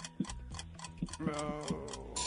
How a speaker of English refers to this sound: Oh, there's the timer.